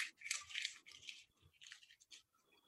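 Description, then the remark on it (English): A 100-euro banknote is crumpled in the hands, giving crisp, scratchy crackles in irregular bursts that thin out and grow quieter toward the end; no one speaks. “It's still 100 euros right there. It's just like... It's crumpled up.”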